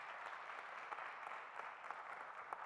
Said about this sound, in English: Let's give God a hand clap of praise for all of that.